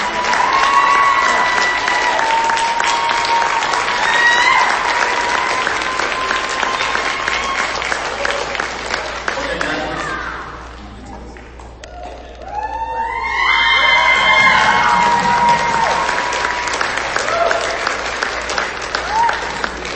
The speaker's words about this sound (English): This concludes our ceremony, and I just want to challenge everybody who's never been to SFTI to sign up next year. And on the most time, we're going to give another round of applause for our community.